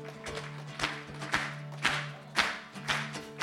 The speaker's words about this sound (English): And let's finish off with this last song. Come on, let's clap.